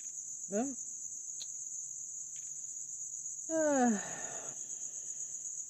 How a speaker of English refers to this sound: So, that was a little ASMR of crickets, real crickets.